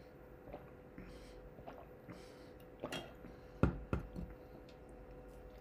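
Quiet sipping of coffee or water from a cup: small wet mouth clicks and faint slurps, then two louder gulping swallows near the end, with no talking.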